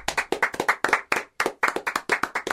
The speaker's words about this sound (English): So, let's clap. Clap. Clap!